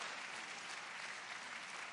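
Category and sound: crowd, audience hand clapping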